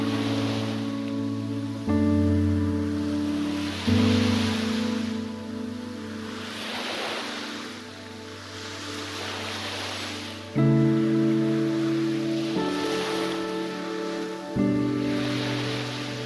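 Gentle morning waves lap at East Coast Park Beach near Marine Cove in soft, repeating swells of hiss, heard beneath sustained, slowly shifting musical chords that change every few seconds. No one speaks.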